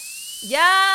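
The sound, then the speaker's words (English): A thin, steady high-pitched whine like a dentist's drill whirring, with a hissy edge; about halfway through, a voice comes in with a sustained droning tone over it. “A dentist drill.”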